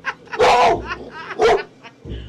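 A beautiful but tough-looking female dog on Greymount Avenue barks twice, loud, each bark a sharp harsh burst about a second apart, with softer yelping sounds in between and after.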